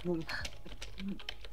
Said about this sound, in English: That's my keyboard.